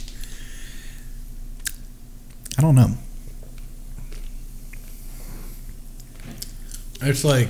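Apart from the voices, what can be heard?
chewing peanuts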